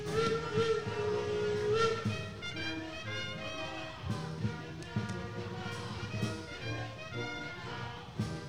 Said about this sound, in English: We got the train coming by.